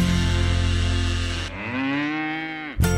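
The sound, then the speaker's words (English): A purebred Guernsey cow lets out one long, loud moo, shifting into a rising, bending tone partway through before cutting off abruptly. No voices, just the animal alone. “Two game wardens, seven hunters, and a purebred Guernsey cow.”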